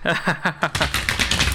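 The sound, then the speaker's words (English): A large deck of cards being shuffled: a quick run of crisp, rapid flutters and snaps, with faint voiced chuckling at the start before the dense riffling takes over. “what you're going to do is shuffle and shuffle and shuffle until you feel like you're done”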